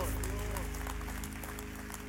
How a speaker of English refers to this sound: Clap your hands, everybody, and bless the Lord.